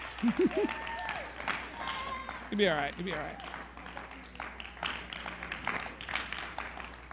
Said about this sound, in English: Keep clapping until she makes it.